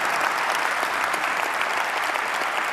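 Steady, dense applause from an audience, a broad wash of many hands clapping at an even, loud level without pause for the full few seconds.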